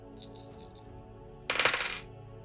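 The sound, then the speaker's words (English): Dice clatter and tumble across a hard surface, a brief burst of rattling clicks after some faint, scattered ticks, with no one speaking; an action die and two challenge dice are rolled for a game, landing 6 on the action die and 5 and 2 on the challenge dice. “That's a 6 on the action die, and a 5 and a 2 on the challenge dice for a strong hit.”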